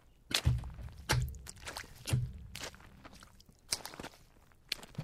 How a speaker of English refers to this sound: Footsteps, wet with blood, seem to be circling you like a predator.